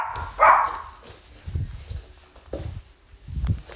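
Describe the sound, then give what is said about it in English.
A dog, going crazy over a pizza delivery, gives one sharp, loud bark near the start, followed by softer low thumps and shuffling noises, with no one talking. “Dog's barking, going crazy.”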